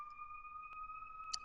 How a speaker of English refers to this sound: Sorry, y'all, there's like ambulances happening.